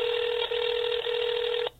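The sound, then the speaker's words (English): A steady telephone line tone from an outgoing phone call ringing through, hums for under two seconds with two tiny breaks before cutting off abruptly. No one speaks. “It's ringing.”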